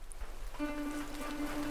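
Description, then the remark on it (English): Steady downpour of heavy, icy rain hammering down, a dense hissing wash throughout, joined partway through by a low, sustained humming drone beneath it. No voices. “Icy rain hammers down through the soot and smoke of Robot London, washing dark oil through the slick cracks and cobbles of Wirechapel.”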